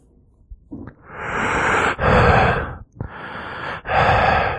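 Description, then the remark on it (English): A voice imitates a tour bus driver talking into his bus microphone: four loud, harsh, rasping breaths in quick succession, in and out, with no words spoken. “our bus driver had a mic that he would use to speak with us. Mm-hmm. And this is what it sounded like when he would talk.”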